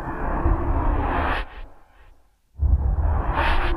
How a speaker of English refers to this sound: Now these are I called opium whooshes, which are just used for transitions to get in and out of other sounds.